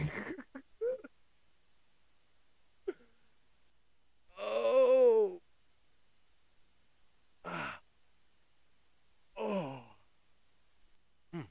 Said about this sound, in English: Excuse me. Shit. The weird impromptu ass yawn.